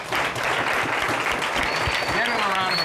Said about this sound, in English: Pause, give him a round of applause.